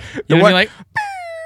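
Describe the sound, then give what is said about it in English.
A voice imitates a high-pitched fart: a loud, squeaky rising burst, a brief pause, then a thin, whiny tone that drifts slightly downward before stopping. “And I want to be like a high-pitched chick fart.”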